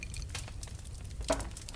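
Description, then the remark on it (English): Ice cubes clink softly in a glass of Johnny Walker Black whisky, a few faint taps followed by one brighter knock with a brief glassy ring, over a low background hiss with no voices. “Too many ice cubes, you say?”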